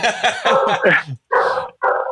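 A dog barks in a rapid, excited run of yips, then lets out two longer, louder barks after brief pauses, with no one talking.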